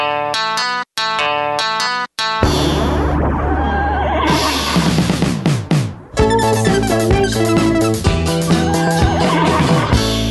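A loud, heavily processed horse whinny, used as a segment intro effect, sounds over a dense electronic jingle, with a few choppy stabs at the start followed by a sustained, distorted musical burst. No one speaks.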